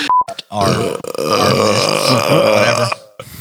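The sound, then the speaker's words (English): A long, loud beer burp rumbles out for over two seconds, deep and gravelly with a voiced, drawn-out tone, preceded by a short click and breath. “Almost had some beer come up with that.”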